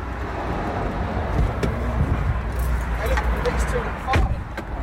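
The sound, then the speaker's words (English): A car with a burst tyre pulls over onto the hard shoulder, its steady low road rumble continuing, with a few sharp clicks and knocks and some indistinct voices underneath. “So now we're pulling over to the hard shoulder.”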